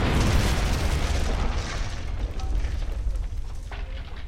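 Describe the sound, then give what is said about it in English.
A heavy explosion booms at the start as something strikes a wall, its deep rumble rolling on and slowly fading over several seconds, with crackling debris and hiss trailing off in the background. “As you do that, there's another explosion and something strikes the wall.”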